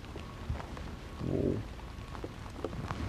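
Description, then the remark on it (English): Rain patters steadily on a plastic tarp, with scattered sharper drop hits ticking out above the constant wash and a brief low swell of noise midway; no voices. “Oh, rainy though. But like a tarp, plastic resistant.”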